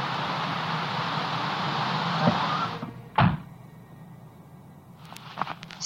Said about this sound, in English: The car's half buried by now, which is probably why I couldn't get the doors open in the first place, but it could have been a non-visible apparition, I guess?